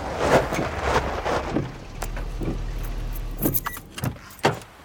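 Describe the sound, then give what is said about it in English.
A car rolls slowly into the gravel driveway of a lakeside house, a low engine rumble under steady crunching tires, with a few sharp rattles and clicks as it comes to a stop. “I turn into the gravel driveway of the cozy lakeside house.”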